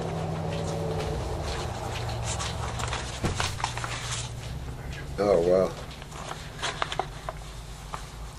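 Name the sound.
truck passing outside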